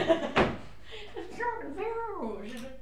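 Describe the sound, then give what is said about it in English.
A drawer, the only drawer there, clunks open with a single short knock near the start as someone looks for a pair of scissors, then someone talks over it. There is no sustained rummaging, just the one thud followed by speech. “Yeah, maybe in the top drawer there. Okay. The top drawer, which is also the bottom drawer.”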